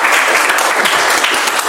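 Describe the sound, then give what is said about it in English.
An audience applauds to welcome a speaker at the start of a talk, a loud, dense wash of many hands clapping at once that stays steady and unbroken for the whole short stretch, with no voices. “So it says pause for applause.”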